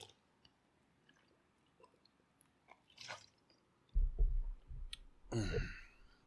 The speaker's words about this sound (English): hang on a second. I'm going to get a drink of water.